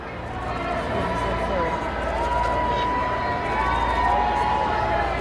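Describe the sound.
A large outdoor crowd at a church roars steadily as King Charles pulls up, a dense wall of cheering mixed with booing and chanting voices that holds at a loud, constant level throughout.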